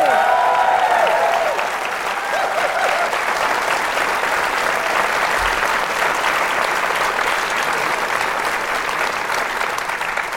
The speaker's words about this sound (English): Don't applaud. It won't make any sense. People will just hear applauding. They're like, what are you applauding? Because I've cut that bit out.